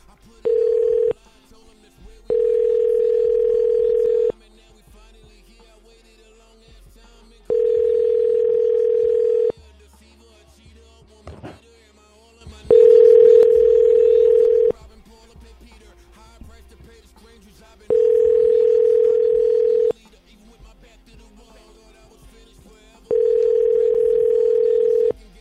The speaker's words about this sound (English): I'm going to try a home number one more time because, I mean, I'm doing everything I can think of to get them to pick up.